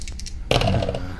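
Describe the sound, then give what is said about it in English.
Dice rattle briefly in a cupped hand, a light clicking shake, then clatter loudly onto a hard surface and tumble for under a second before settling, rolled in a tabletop game needing 6 or higher and landing on 7. No one speaks. “All right, I'm going to shake my dice extra long because this is an important rule.”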